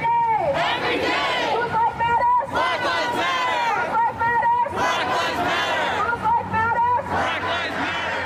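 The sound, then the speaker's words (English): A large crowd protesting the death of George Floyd, in protests that started in Minneapolis and spread across the country, chants and shouts in loud, rhythmic bursts, many voices rising together in repeated waves that stay dense throughout. “Protests that started in Minneapolis quickly spread across the country.”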